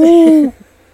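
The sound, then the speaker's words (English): A single loud owl hoot: one steady, low, hollow tone lasting about half a second that ends abruptly, followed by near silence. “I love an owl.”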